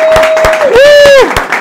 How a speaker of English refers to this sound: Rabbi, we have to give him a round of applause. First question he ever asked.